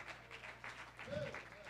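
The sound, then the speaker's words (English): An audience claps together in a steady, continuous patter of hands, fairly faint, with a short voiced sound rising briefly partway through. “Oh, let's clap our hands as if we believe that God has a race for us to win.”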